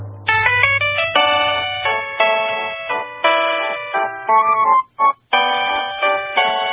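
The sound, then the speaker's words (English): A phone ringtone plays a lilting classical waltz melody in bright, synthetic tones, the notes rising and falling in a steady triple rhythm, loud, with a couple of brief dropouts near the end. “And now, this week's number one ringtone. Number one! For the third week in a row, Waltz of the Flowers.”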